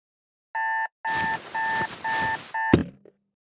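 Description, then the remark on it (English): A loud alarm clock beeps in five evenly spaced electronic bursts with a buzzy edge in the morning, then a sharp knock cuts it off, followed by silence. “The next morning, I woke up to my alarm, which on any other day would have been ideal”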